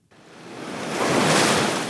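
Surf washes onto a beach at Da Nang in central Vietnam, fronting the South China Sea, in a broad, hissing rush that swells gradually and stays loud, with no voices over the steady roar of breaking waves.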